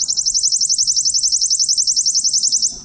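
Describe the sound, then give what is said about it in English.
A recording of a worm-eating warbler, at a distance, singing a dry, rapid, insect-like trill of high, buzzy notes, evenly paced and steady for nearly three seconds before stopping. No one speaks over it. “So here is the worm-eating warbler.”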